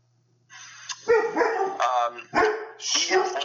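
A dog barks several times in quick succession, loud and close, with short yelping, harmonic barks packed into a few seconds.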